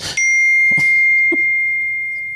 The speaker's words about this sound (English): That's your dinging. Yeah, because I didn't mute my phone thinking no one's going to text me late at night.